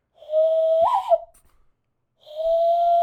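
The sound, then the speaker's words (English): A person whistles two long, steady notes separated by a short pause, a human imitation of birds chirping rather than real birds. The whistling is fairly loud, with no talking. “I'll add some, like, birds chirping.”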